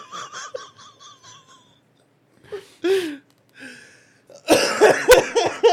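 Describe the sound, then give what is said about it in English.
A series of harsh, loud coughs, starting with quick raspy bursts, then a pause, a few wheezy gasps, and a final cluster of forceful, throaty hacking. “I'm a little loud when I fucking cough.”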